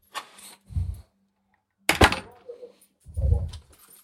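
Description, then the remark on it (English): A door is unlatched and pushed open: a rattling click, a soft thump, a sharp bang of the latch, then a low rumbling sweep as it swings, with no voices. “Let's go through this door and see what these nut jobs are doing.”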